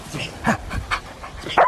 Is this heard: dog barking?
yes